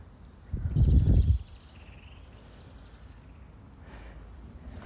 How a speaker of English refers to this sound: You can hear the birds.